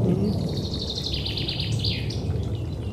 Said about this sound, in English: Thrush, is it?